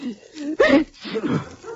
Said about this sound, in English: Gesundheit. Yes, you.